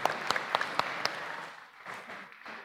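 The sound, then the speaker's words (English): A crowd applauds for everyone present, with sharp individual claps standing out early in a dense patter of clapping that thins and softens toward the end. No one speaks over it. “And round of applause for everyone.”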